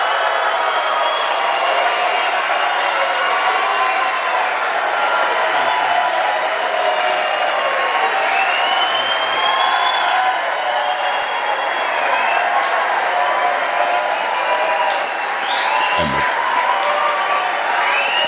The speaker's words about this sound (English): Crowd goes wild.